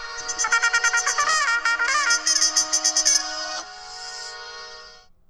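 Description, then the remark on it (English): A bright electronic phone ringtone for an incoming call plays a quick, pulsing melody of repeated notes, then settles into a sustained tone that fades out. Fairly loud, with no voices. “I'm getting a phone call as I'm trying to play for my best friend.”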